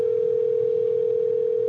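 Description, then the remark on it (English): A steady, unbroken telephone tone of an incoming call hums at a single pitch for the whole moment, loud, with no voices or other sounds over it. “This is our first phone call, everybody.”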